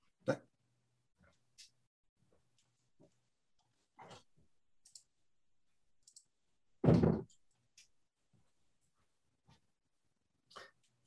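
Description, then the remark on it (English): A door is opened to let a dog in: scattered soft clicks and handling noises, then one loud, brief thump of the door, followed by a few faint taps. “My dog found himself on the wrong side of the door.”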